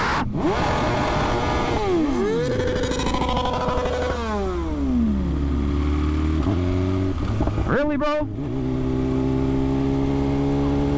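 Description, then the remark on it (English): A rider revs a motorcycle engine loudly at a man who pulled out in front of him, its pitch climbing and dropping in several surges before settling into a steady idle, while a man briefly exclaims over it. “It was a dude pulling out in front of me and I revved my bike”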